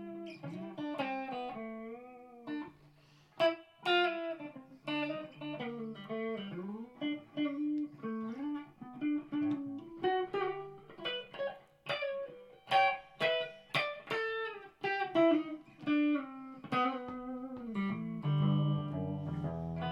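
A big Gibson electric guitar is played through distortion and effects. It picks out a melodic line of sustained single notes and bends, with sharp, punchy strums scattered through. It plays alone, fairly loud and steady.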